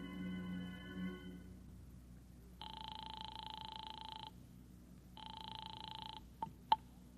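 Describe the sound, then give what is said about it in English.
A telephone rings twice through the receiver on a call from a phone booth to a home, two long buzzing trills separated by a pause, followed by a couple of sharp clicks as the line is picked up. No one speaks. “I beat it to the nearest phone booth and called Howard Wilcox's home”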